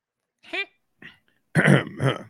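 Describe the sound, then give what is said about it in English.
A person clears their throat: a couple of soft, short rasps, then two louder, harsh, gravelly bursts in quick succession. “Let me clear my throat.”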